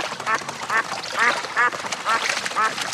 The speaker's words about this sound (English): Here, with those ducks.